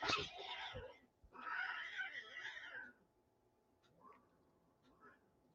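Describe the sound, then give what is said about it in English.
Cats fighting outdoors outside a window, one likely a pet cat: two loud, harsh screeching yowls in quick succession, followed by fainter, scattered cries and rustling as the scuffle dies down. “My cat's outside having to fight.”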